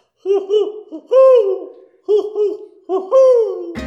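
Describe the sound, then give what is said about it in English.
An owl hoots in two matching phrases, each a few quick rising-and-falling hoots ending in a longer drawn-out descending call, loud, with no talking, ending in a brief click. “Watch your head. We have a feathered friend swooping down low.”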